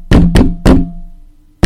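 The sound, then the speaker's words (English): Four loud knocks on the outside wooden wall of a log home: three in quick succession, each ringing out with a resonant decay, then a pause before a fourth. No voices. “the Bells began, you know, hearing some beating sounds on the outside of their log home”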